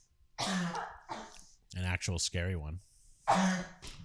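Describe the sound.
Several rough coughs and throat-clearing bursts, one pair at the start and another after a short spoken phrase in between.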